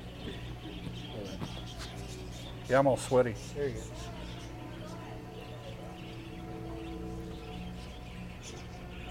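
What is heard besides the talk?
pet birds chirping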